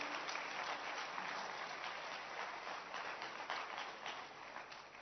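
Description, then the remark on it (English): A church audience claps steadily, dense overlapping handclaps forming a continuous, bright wash of applause that holds for several seconds and softens slightly toward the end, with no voices above it. “You can clap your hands.”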